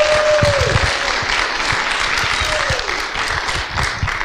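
An audience at a church applauds as one of the church's kids comes up to share, a dense wash of many hands clapping at a fairly loud, even level, with a couple of brief descending tones and a few faint voices mixed in.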